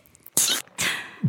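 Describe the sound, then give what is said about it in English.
A deliberately cute, dainty sneeze: two short, breathy, hissy bursts in quick succession, light and high-pitched, with no talking around them. “You know you can change your sneeze. No. I change mine when I'm trying to be cute.”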